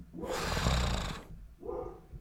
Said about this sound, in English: A dog walked by the house. That's why she barks.